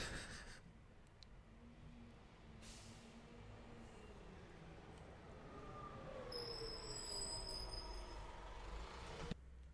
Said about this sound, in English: There's a train.